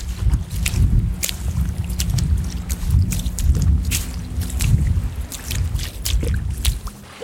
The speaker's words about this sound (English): There's just a spattering of people out today, listening to music, laying on the beach, massage tables set up, some people riding jet skis.